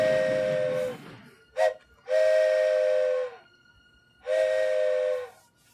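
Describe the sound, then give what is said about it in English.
A passing train's whistle blows four loud blasts: a long one, a brief toot, then two more sustained blasts, the trailing whistle showing the Doppler effect, with a faint hiss and low rumble between them and no voices. “That trailing whistle sound is an example of the Doppler effect.”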